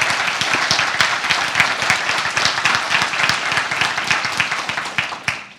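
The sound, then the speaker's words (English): An audience bursts into steady, loud applause for a man retired after 20 years in the Navy, many hands clapping in a dense, crackling patter that holds for several seconds before tapering off at the end. “Yeah, give him a hand.”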